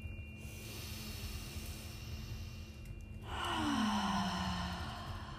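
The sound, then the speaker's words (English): A single deep breath drawn in through the nose during a guided meditation, followed by a long, audible exhale that swells louder, with a steady low hum underneath. “We'll take two more just like that, breathing in through the nose and out with an audible sound.”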